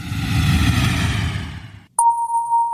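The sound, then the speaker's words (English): A broad, steady engine-like roar fills the first two seconds, then cuts out as a single clear electronic chime rings, like an airplane cabin seatbelt sign tone, holding one steady mid-pitched note. “You can now take off that belt and move freely around the cabin.”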